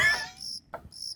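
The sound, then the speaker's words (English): A steady chorus of high insect chirping and buzzing, pulsing in sync in short bursts, with a brief lower croak-like note partway through, fairly loud with no voices. “why are you all croaking and buzzing and chirping in sync?”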